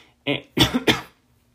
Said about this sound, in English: And I'm recording this with, like, no cuts or anything. So there's a few coughs. It's all right. Bear with me.